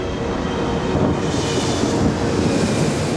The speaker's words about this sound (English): The door to the jetway closes, and the plane begins to taxi without Peaches in his bag of war.